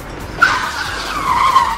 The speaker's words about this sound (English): Baron Baudelaire, seeing what has happened behind him, slams on his brakes.